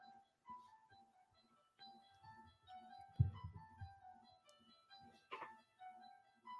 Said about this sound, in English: Oh, someone's calling the other phone. That's way over there. Hang on one sec.